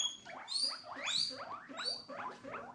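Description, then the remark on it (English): A guinea pig squeaks happily in a rapid series of high, rising whistles and chirps, repeating steadily at a fairly loud level with no voices present. “Oh, this squeaking. Is a happy one. This is a happy guinea pig.”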